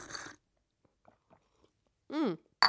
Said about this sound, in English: Let's take another gulp.